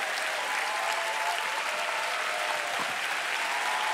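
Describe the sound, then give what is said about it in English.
Steady, dense applause from an audience, a continuous wash of many hands clapping at an even loudness throughout, with no voices standing out. “I said, I thought you'd be standing and clapping and shouting and shouting.”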